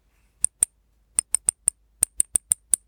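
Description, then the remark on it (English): Silver Walking Liberty coins of 1/10 and 1/4 troy ounce clink together about eleven times in short, bright metallic taps with a high ringing tone, coming in small irregular bursts with brief silent gaps and no voices. “Could you hear what that was? It was real money. It's silver coins.”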